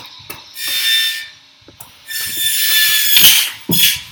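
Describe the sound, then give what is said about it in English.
A power tool whirs in three loud bursts, each a high-pitched buzzing drone that starts and stops abruptly with short pauses between, and no voices. “Should we move inside? Why is that? Because of the power tools?”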